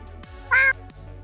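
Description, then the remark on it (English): A person does a single short, loud imitation of a cat's meow, a quick tonal call standing alone against a quiet, steady background. “I have a pretty good cat meow.”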